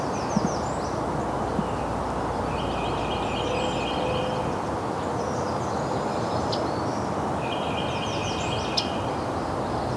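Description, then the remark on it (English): A yellow-rumped warbler gives a couple of sharp, soft tick calls among other high bird chirps and a steady hiss of rustling background noise. “Yellow rump warbler. That's the soft tick.”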